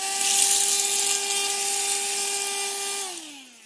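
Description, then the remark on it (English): A small motor whirs at a steady high pitch with a hissing airflow rush, then spins down, its whine sliding lower as it switches off near the end. No one speaks. “Maybe we need a bigger vacuum cleaner is perhaps what we need, right?”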